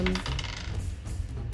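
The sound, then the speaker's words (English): A die falls off a desk and clatters onto a hard surface, with a quick bright impact followed by a brief rattling bounce, fairly loud, with no voices. “Double those dice. Roll them all up. Oh, shit. Sorry, that fell off the desk.”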